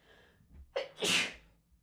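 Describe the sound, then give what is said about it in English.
A single forceful sneeze: a quick sharp intake of breath followed by a loud, explosive burst that fades out within a second. No one speaks. “I tried to fight it, but I lost.”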